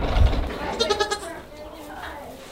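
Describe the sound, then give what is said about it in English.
Little goats bleat in a short, wavering burst of tremulous calls while bumping into a camera, preceded by a low thump, with quieter rustling afterward. “Naughty little goats. Bumping into the camera.”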